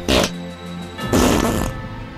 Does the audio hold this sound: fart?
yes